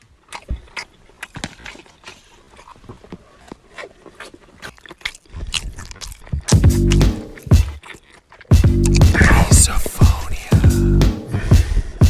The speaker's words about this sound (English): The sound of chewing make you grit your teeth. Misophonia. makes you want to kill someone and get so mad.